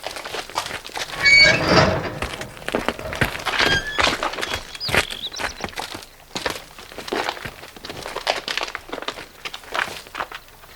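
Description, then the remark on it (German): Several sets of footsteps, the four TKKG friends, crunch steadily through a gate and along a gravel path between graves in a cemetery, a dense, uneven patter of gritty scrapes that carries on for about ten seconds with no talking. “Dann trabten TKKG durchs Tor und einen Kiesweg entlang, zwischen Gräbern mit üppiger Bepflanzung und kunstvollen Grabsteinen.”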